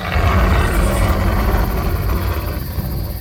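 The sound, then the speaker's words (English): A large adult male lion bellows a roar at midnight, a deep, rough roar rumbling loud for about three seconds, a continuous throaty growl with a gritty, pulsing texture that fades slightly toward the end. “Unexpectedly, he stopped just before the blind, raised his head as if he sampled the midnight air, and then without warning, bellowed a defying, deafening roar.”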